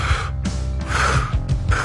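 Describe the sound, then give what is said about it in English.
A voice mimics a partner's snoring with a few rough, breathy gasping snorts in quick succession, fairly loud, with no words spoken. “Beth sometimes is, I'm not saying she's snoring, but she's like...”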